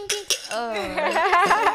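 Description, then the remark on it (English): A few sharp glassy clinks of glasses raised in a toast ring out at the start, followed by a ringing, wavering tone that sounds partly vocal, with voices murmuring underneath. “Let's cheers to that. Ting, ting.”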